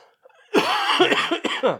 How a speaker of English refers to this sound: I got that old man wheeze cough now.